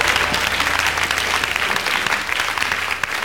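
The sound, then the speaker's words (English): An audience claps steadily for several seconds, a dense, loud wash of many hands with no single claps standing out and no voices rising above it. “If you can't clap, I understand.”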